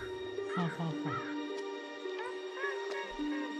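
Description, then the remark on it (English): A person copying the sound of birds imitates their calls, a series of about five harsh, crow-like caws in an irregular rhythm, fairly loud over a steady background hum. “No, yeah, that was me. But I was just copying the sound of the birds.”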